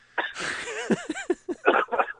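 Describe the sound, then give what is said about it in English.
A ragged coughing fit: a harsh burst, then several strained, wheezy vocal gasps rising and falling in pitch, followed by two more rough, breathy coughs. “I'm Patreoning all over your coughing.”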